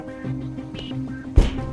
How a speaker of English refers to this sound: There's a thud at the door, the sound of wood rapping on wood. Open this door at once! Agents of the Warden of the Royal Mint.